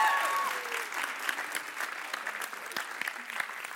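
A church audience applauds its volunteers steadily, a dense wash of many hands clapping that stays fairly even in loudness throughout, with a few faint whoops near the start.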